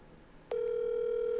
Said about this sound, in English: I'm going to be calling her. All right. That's if she answers. Oh, it's ringing. The suspense.